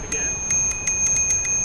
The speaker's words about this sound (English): And then I just ring my little bell, you know, ring it back at them.